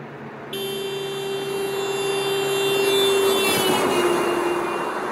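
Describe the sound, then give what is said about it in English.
A vehicle roars past with a steady, whining engine tone that swells in loudness and then drops slightly in pitch as it moves away. No one speaks. “As it passes us, we are now hearing the spread out waves from the sound, and because it is traveling away from us, and so it makes that lower pitch.”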